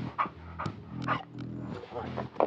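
A dog whines and whimpers in a series of short, high, tonal cries, with a few sharper bark-like yelps mixed in, fairly loud throughout.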